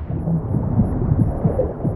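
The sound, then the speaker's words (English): Film opening sound design: a muffled, low heartbeat slows as if diving deeper, thudding steadily through a deep underwater-like rumble, its soft beats blurred and heavy, with no voices present. “You can hear the heartbeat slowing, because that's what happens when you dive deeper.”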